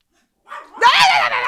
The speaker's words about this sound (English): Everyone, just ignore my dog barking.